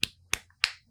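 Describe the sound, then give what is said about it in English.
Three crisp slaps in an even, walking-pace rhythm, someone imitating flip-flops smacking against the heels. No one speaks. “Yeah, it's like slap, slap. It's like a slapping noise.”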